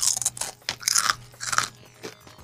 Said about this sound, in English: All right, I'm just gonna sit back and eat my potato chips while you. All right. This is gonna be this is thing for me now. I'm just gonna sit here and chew while you.